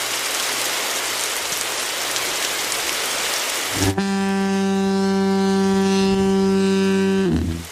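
Steady, dense rain hisses for several seconds, then a loud, deep horn blast sounds over it for about three seconds before cutting off, with the rain still faintly underneath.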